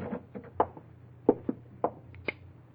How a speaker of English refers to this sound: And then suddenly, you wheel around in your chair, stiffen as you hear the key in the lock of the office door. You're unable to move, to call out. Unable to take your eyes off the doorknob as it turns slowly.